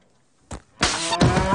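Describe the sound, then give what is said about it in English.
A loud, drawn-out cow moo bursts in and holds to the end, preceded by a brief, softer grunt-like sound; no one speaks. “On second thought, I'll just have a glass of milk from that cow.”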